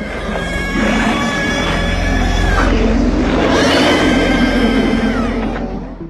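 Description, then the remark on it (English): A loud, harsh monster shriek of the creature formed when dogs transform in John Carpenter's sci-fi horror film The Thing, made by combining heavily processed bird calls with pig squeals; layered squealing and bird-like screeches sustained about five seconds with wavering, bending pitch, dense before tapering off. “The shrieking sound it makes was created by combining heavily processed bird calls with pig squeals.”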